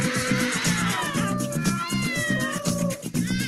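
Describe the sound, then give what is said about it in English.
Several cats yowl and meow continuously, their drawn-out, wavering cries overlapping and fairly loud, with no talking. “Cat orgy.”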